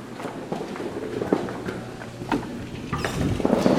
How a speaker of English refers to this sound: going through a door, going through another door, and we're outside. Just a little soundscape. Cloudy out.